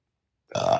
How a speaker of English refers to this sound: Uh-oh. As I burp.